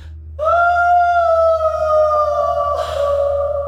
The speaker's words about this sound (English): Echo through the entire building. Did I miss? I don't know. I don't know what that wail was, but it sounded like the same one.